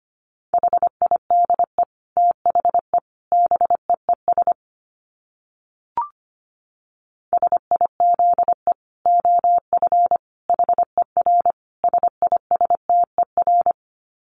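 Morse code tones at 25 wpm: a steady mid-pitched beep keyed into rapid dots and dashes, running in bursts with a pause and a soft click in the middle, no voices.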